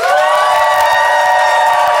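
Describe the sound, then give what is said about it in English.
The Phoenix audience bursts into loud, sustained applause mixed with cheering and whoops, voting by applause for the London and Fanshawe side of a debate, a dense steady roar of clapping and shouting voices lasting the whole couple of seconds. “if you think London and Fanshawe and therefore Miriam is in the right, I would like you to applaud now.”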